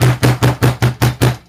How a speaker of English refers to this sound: he starts pounding on the door.